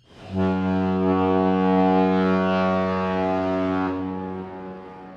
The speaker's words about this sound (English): What was that? I think that was a signal the boat is leaving. And what does that mean? I just told you. It means the boat's leaving. You mean leaving the port?